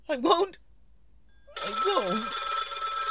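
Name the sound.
telephone bell ringing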